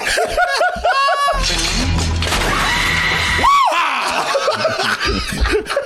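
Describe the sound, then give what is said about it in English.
Two people in a scream-off contest trade loud, shrill screams and whooping shrieks back and forth, nearly continuous for several seconds, with rising and falling pitch and bursts that sound almost like laughter. “Come on, y'all, it's a scream off.”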